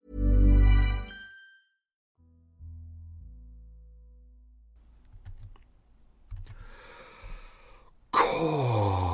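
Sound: human yawn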